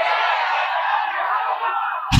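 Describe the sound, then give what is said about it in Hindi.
A church audience shouts together in a loud, sustained roar of many voices, steady for about two seconds before a sharp thump cuts in at the end. “जब मैसेज हो गया अब उसके बाद चिल्लाइए, चिल्लाइए।”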